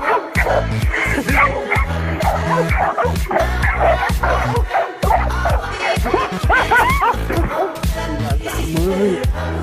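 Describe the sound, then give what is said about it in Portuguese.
A big dog barks loudly and repeatedly in a fast, continuous volley of deep barks, with occasional whimpering yips mixed in and faint voices in the background. “Eu, esse cachorrão, mil grau.”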